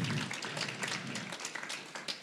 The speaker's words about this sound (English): So thank you, everybody. Let's give them all a round of applause.